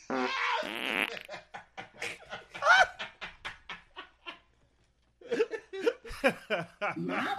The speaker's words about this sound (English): Which, I'm also trying to hold in the Chipotle fart that I have in me. please hold it, please. I'm alive with the sound of farts.